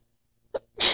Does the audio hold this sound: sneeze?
yes